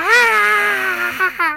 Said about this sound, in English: I was just trying to play a scream off my phone. I was pulling up these scream snippets and stuff,